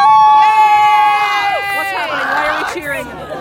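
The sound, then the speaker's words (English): A loud burst of excited cheering and high-pitched yelling from a small crowd at a sports game, with sustained shouts rising and falling over about three seconds amid general hubbub. “Cheering.”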